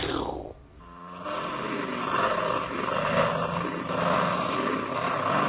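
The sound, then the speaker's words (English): A distorted, panned electric guitar effect at the end of a 1966 song, imitating a panther's roar: a quick downward swoop, then a loud, gritty, sustained growl that churns steadily for several seconds. “The sound of a panther at the end of it could mean a lot of things.”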